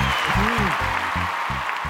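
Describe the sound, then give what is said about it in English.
An excited crowd claps and cheers in a dense, steady roar in a show's new intro, filling the whole stretch, with low rhythmic tones pulsing beneath the applause. “Hey, do we get a new crowd in the new intro? No, it's the same old crowd. They just do sound very excited, don't they?”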